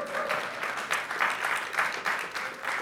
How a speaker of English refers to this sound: Let's give her a hand now.